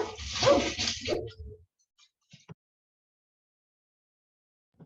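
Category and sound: animal, dogs barking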